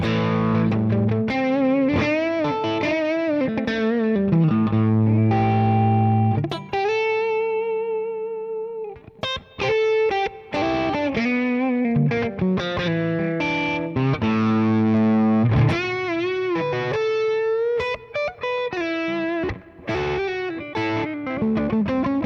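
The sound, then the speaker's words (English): A loud, overdriven electric guitar played through a high-wattage amp into reverb and power-amp simulation, with preamp, gate and EQ turned off, strumming sustained chords and bending notes in a continuous riff, with a brief pause midway and no talking. “So only reverb, power amp. That's on. Now this is now the high watt going into it.”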